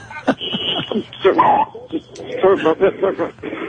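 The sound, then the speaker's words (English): A dog barks a few times in short, sharp bursts during a phone call. The barking is fairly loud and tangled up with people talking and chuckling over a slightly thin, phone-like line. “I accidentally, the dog had just walked a little bit too.”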